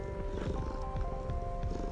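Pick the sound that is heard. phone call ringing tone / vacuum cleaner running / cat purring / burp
cat purring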